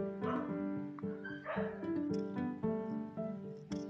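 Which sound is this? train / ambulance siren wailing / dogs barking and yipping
dogs barking and yipping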